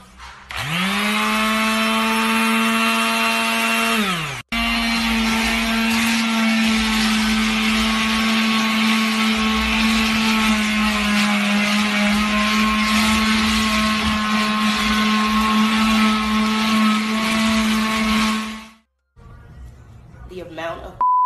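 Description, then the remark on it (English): A sandblaster, used to clear the floor of a room, roars to life with a rising whine, cuts out for an instant, then runs as a loud, steady, buzzing motor drone with hissing blast noise before shutting off near the end. “Bruh, she had to sandblast 3 years worth of dead chickens off out of her room.”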